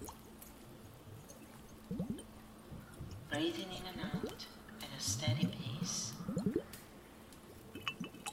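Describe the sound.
Soft trickling, dripping water runs beneath a calm, steady voice guiding a chakra meditation, with brighter splashy bursts swelling in the middle before easing back under the speech.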